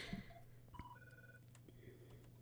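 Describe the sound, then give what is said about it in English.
A telephone rings with an incoming call to the Knock 'Em Dead Comedy Radio Show, a few short electronic tones in quick succession, fairly faint over a low steady hum, with no one speaking. “And the phone's ringing already.”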